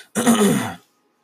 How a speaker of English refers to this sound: Sorry, just gonna clear my throat there.